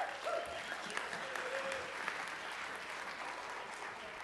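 An audience claps steadily for a few seconds as a person is called up to the front, a dense, even wash of many hands with no break in rhythm, with a brief faint voice at the start.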